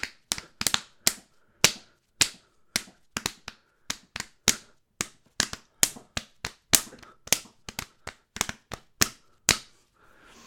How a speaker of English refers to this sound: I can slap my tummy into the theme to What Would You Do.